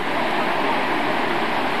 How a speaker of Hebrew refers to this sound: פה יש מנהרה שהים חותר, הופ, מגיעים גלים תחת לסלע הזה.